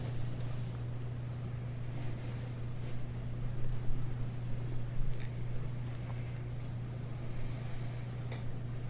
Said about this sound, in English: It's nice to hear the sound of the rain.